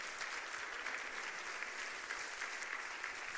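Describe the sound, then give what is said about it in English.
A church audience bursts into sustained applause as a clap offering to the Lord, a dense, steady wash of many hands clapping with no one speaking over it. “Give the Lord a clap offering today.”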